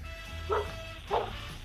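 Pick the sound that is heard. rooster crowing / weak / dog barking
dog barking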